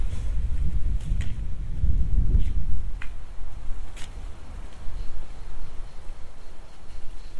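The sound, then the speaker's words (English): Wind on a hilltop at Mirabel, France, on a bright, hot day, buffets the microphone in a low, steady rumble, gusting hardest in the first few seconds, with a handful of faint ticks scattered through the hiss and no voices. “And it's on top of a hill, so sometimes it's quite windy.”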